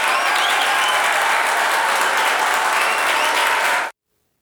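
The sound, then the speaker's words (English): Steady, loud applause from a crowd, a dense wash of clapping that holds evenly for about four seconds and then cuts off abruptly into silence. “Wait for applause.”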